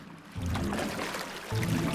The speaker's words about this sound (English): They hopped into Polly's boat and paddled over to the waterfall. We anchor and paddle away! Faster, faster, we mustn't delay! Paddle! Paddle! Paddle faster!